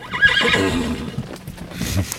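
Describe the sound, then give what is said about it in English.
A horse at Sylvandale whinnies loudly, its high, wavering neigh rising and falling over about a second, followed by softer snorting and shuffling sounds. “In case you haven't guessed, one of the all-time favorite things to do at Sylvandale is be around the horses.”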